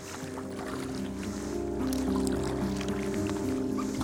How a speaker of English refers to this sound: Okay, here we go. Here comes the bow. Up over the wave, into the trough, up over the wave, into the trough, up over the wave, into the trough.